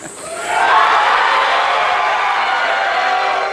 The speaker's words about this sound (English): This is the crowd reaction.